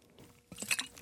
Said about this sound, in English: A little bit of coffee there. In a, what is this? In a blender bottle.